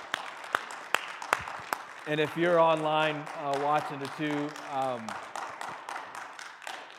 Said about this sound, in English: One more time, let's just give him a round of applause.